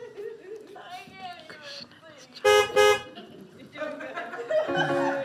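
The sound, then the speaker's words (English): The horn of the Jolly Trolley gives two short, loud, bright beeps in quick succession, standing out above a busy background of voices and tuneful sounds that continue before and after. “Beep, beep.”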